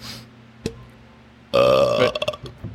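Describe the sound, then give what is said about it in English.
A loud, deep burp rumbles for about half a second, followed by a few short, choppy trailing noises. A brief click sounds earlier in the otherwise quiet clip. “There's the … burp.”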